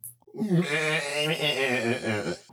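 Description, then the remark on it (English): A single long, quavering goat bleat, loud, wavering in pitch for about two seconds before cutting off. “Did you get a goat”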